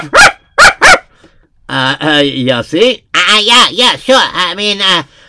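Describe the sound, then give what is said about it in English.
A dog barks three times in quick succession, loud, in a studio, followed by a few seconds of voiced, speech-like sounds with no further barking. “So we use our imagination and presto, a dog pops into the studio.”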